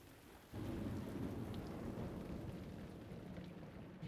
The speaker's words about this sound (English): And now it rains. Day and night and evening and every time in between.